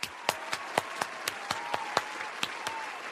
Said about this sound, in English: Welcome to the show. Claps.